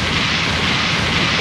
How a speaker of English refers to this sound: Yeah, we have explosion sounds.